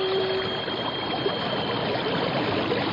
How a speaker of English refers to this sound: what's that noise? It sounds like a giant waterfall. There are no falls around here. It's a whirlpool. We're being sucked under.